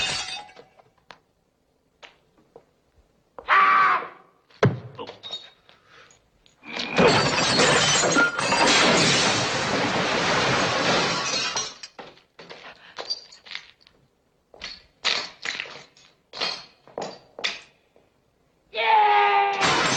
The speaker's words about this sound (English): Scene at the time was the biggest quantity of breakaway or sugar glass broken or smashed on one occasion. Not filmed in one take, but a number of smaller takes,